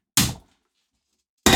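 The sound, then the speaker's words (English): A window being shut: a loud, sharp thunk that quickly fades, then a stretch of silence before a second solid thump cuts in at the very end. No one speaks. “And let me shut this window because I can hear a helicopter.”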